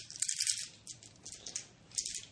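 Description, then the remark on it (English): Dice rattle and clatter in a few quick, irregular bursts of bright clicking, fairly soft overall, with no voices over them, as dice are rolled in a dollar gambling game against the house. “Look at all them there dice.”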